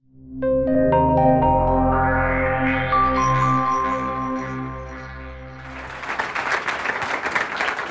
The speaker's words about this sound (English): Applause, and I haven't even started yet.